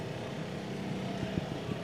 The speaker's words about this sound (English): No, so the cars driving by.